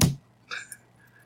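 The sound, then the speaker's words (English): A few sharp clicks of computer keyboard keys being struck: one crisp tap, then a brighter clack with a brief ringing edge, and then quiet. “your keyboard is so loud tonight.”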